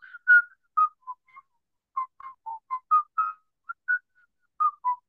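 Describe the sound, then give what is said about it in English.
A soft, melodic whistled healing song (icaro) as used in ayahuasca sessions: short separate notes rising and falling around a mid pitch, unhurried and chant-like, with brief pauses between phrases and no talking. “In ayahuasca sessions, for example, the Zikaros, which is through whistling.”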